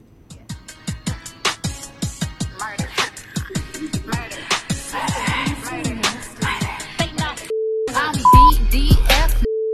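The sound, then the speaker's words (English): A steady, mid-pitched electronic censor beep, pressed live by hand over a playing video, cuts in near the end, holding a flat tone briefly, pausing, then returning, after a stretch of busy, rapidly pulsing sounds. “I'm going to try and live beep.”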